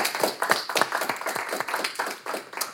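An audience applauds, a dense patter of many hands clapping at once, steady and fairly close, lasting the whole few seconds with no voices.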